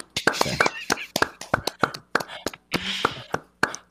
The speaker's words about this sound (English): A little round of applause to show that we're not. Gender insensitive.